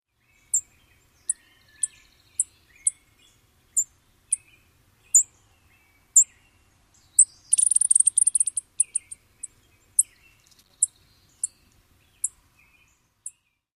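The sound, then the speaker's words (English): A chipping sparrow gives a string of short, high, sharp chip notes at irregular intervals, with a brief rapid burst of buzzy twittering partway through, over a quiet background with no talking. “So one more time, here is the call note of the chipping sparrow.”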